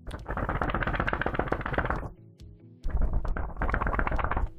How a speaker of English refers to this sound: See, that's me drying out the paper.